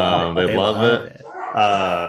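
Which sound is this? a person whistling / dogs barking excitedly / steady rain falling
dogs barking excitedly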